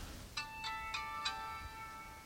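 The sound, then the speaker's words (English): A phone ringtone plays a short melody of four bright, chiming notes in quick succession, their tones ringing on afterward. It is moderately quiet, with no one talking over it. “I'm going to turn my phone off so it doesn't keep bothering me.”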